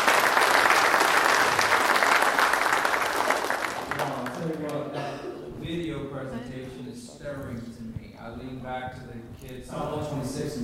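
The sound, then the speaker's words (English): Loud, dense audience applause at a church gathering, thanking a group, fills the first few seconds, a steady wash of clapping that fades as a man begins speaking over its tail. “Let's give them a round of applause tonight and just thank them.”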